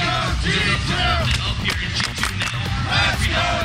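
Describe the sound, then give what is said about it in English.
A packed esports crowd at a G2 versus Mocket match roars steadily and loudly, with individual shouts and rising yells cutting through the dense wall of cheering throughout. “The crowd went totally crazy for that.”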